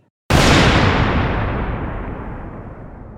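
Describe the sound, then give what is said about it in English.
A single sharp, loud crack of thunder bursts in suddenly, then rolls and rumbles on with deep low tones, slowly fading over a few seconds. No one speaks. “A crack of thunder.”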